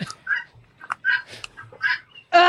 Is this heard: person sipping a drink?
no